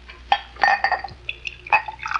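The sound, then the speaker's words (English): Wine glugs and splashes into a glass, a short pour with bright, ringing gurgles and a few drips trailing off, with no talking. “living off of chicken and wine? Let me fill your glass.”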